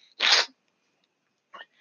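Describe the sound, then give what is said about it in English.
A single sharp sneeze bursts out loudly, followed by silence and then a brief faint breathy sound near the end. “And great, sneeze on air.”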